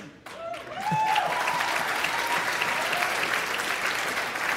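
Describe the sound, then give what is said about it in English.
An audience of conservative college students applauds after being called thick-headed and stubborn as hell; the applause swells after a brief quiet start and holds steady as a dense, crackling wash of clapping, with a few faint voices mixed in beneath it. “You got them to applaud by calling them thick-headed and stubborn as hell.”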